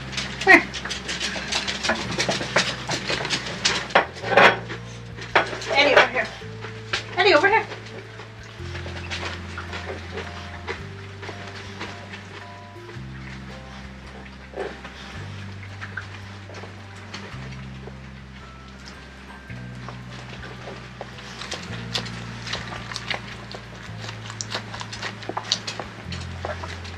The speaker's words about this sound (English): Can't talk about the dogs eating sausage and rice and not show them eating sausage and rice. Here's a little sausage and rice for the Poochies.